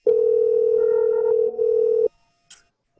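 A single steady electronic ringing tone of a cell phone call placed by a woman sitting in her car to a friend sounds for about two seconds, clear, then cuts off into near silence broken by a faint click.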